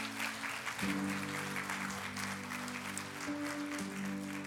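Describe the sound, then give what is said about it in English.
Steady church crowd applause celebrating people who were baptized fills the whole clip, a dense wash of clapping with no pauses, while sustained keyboard chords hold underneath and shift pitch a couple of times. “So can we give them a round of applause one more time?”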